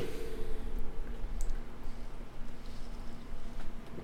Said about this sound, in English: Oh yeah, and by the way, all this echoey sound on taps. That's us tapping the table.